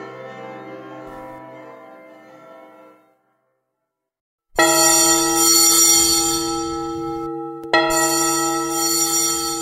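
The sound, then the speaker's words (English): A bell rings and slowly fades into silence, then loud, bright brass alarm bells clang sharply, with a second hard strike a few seconds later, their clanging tones ringing on together. “Hear the loud alarum bells, brazen bells.”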